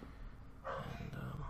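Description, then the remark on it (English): Faint dogs barking somewhere in the background, a drawn-out yelping burst starting partway through and carrying on to the end, muffled with no one talking over it. “That's all I got besides the dogs barking in the background.”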